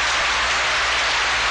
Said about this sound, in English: You get it right away in the theater, and you can tell how this opening night audience feels. They're on their feet. It's a standing ovation for Angela Lansbury, and Broadway has another smash hit.